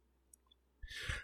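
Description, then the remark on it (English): After a near-silent moment with a couple of faint ticks, dice clatter and tumble across a tabletop in a short, rattling burst that stops abruptly, rolled for a monster's attack damage in a tabletop role-playing game. No one speaks. “And hits you for, I'm going to roll this for you because the default stat block would be overly cruel.”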